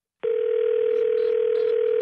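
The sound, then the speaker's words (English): A steady telephone dial tone starts abruptly and holds one unchanging pitch at constant loudness, sounding alone like an open line after a hang-up. “I just hang up on you.”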